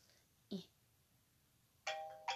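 A phone ringtone chime: a brief blip, then a bright, sustained multi-tone electronic chime that rings out loudly near the end and gets cut off, with no talking over it.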